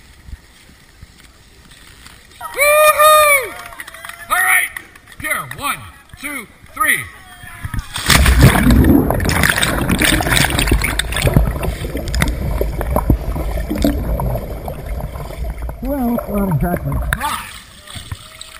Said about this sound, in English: This is in New Hampshire at Dartmouth University. If you don't know where New Hampshire is, find Maine and go down about a quarter of an inch. It is a long way up there and it's cold. And watch these guys hitting the water a couple of winters ago.